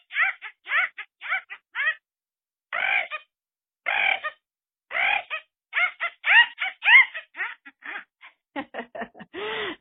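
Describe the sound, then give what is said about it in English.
A person vocally imitates an acorn woodpecker, giving loud, raucous nasal squawks in quick rhythmic bursts of several notes each, with brief pauses between groups and no talking. “Here is one of my favorites. It's called the acorn woodpecker.”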